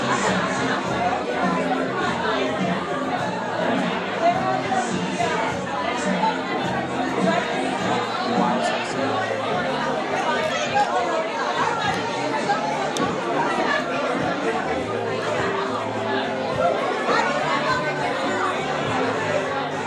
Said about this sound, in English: This is quite the sound collage. It's quite the sound collage. You get to hear crowds, you get to hear background sounds, you get to hear beers, glasses, clinking, people drinking, people loud and crazy.